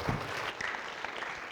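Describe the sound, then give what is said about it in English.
A crowd claps together in steady, dense applause, a continuous patter of many hands at moderate loudness that carries through the whole short stretch without any voices. “Let's give her a hand clap.”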